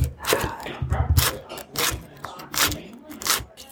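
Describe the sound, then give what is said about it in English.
A knife chops on a cutting board, six or so sharp, crisp knocks at an uneven pace, with some low murmuring voice sounds in the background between strikes. “Can I get some chopping sound?”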